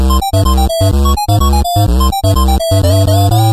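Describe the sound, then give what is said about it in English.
The Pac-Man retro arcade video game theme in bright, buzzy chiptune tones: loud, bouncy notes in short phrases separated by quick gaps, with a low bass pulse underneath and no voices. “I think it's Pac-Man.”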